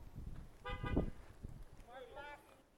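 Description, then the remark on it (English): A short car horn honk sounds, followed a moment later by a second, wavering honk, both over a low rumble of background noise. “Raise your hand or honk if it's your birthday this month.”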